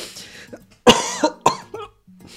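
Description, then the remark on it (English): Two abrupt, jolting hiccups about half a second apart, each a sharp breathy burst with a brief voiced catch, surrounded by faint breathing and quiet background. “I have hiccups.”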